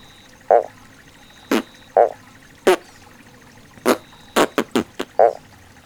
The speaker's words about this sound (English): What a funny nature sound. Can you make the farty sound of a Mount Bellow mountain frog? Give it a go with me.